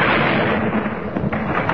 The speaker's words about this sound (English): Bell fired at the precise moment when the bomb exploded. This time the explosion wasn't quite in that next block.